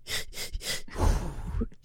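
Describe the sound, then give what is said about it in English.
A voice imitates heavy straining while pushing: a few sharp, breathy gasps in quick rhythm, then a longer, low, pressured exhale like someone bearing down hard, fairly loud. “I breathe push. That's not. That's part of the pushing, is the breathing.”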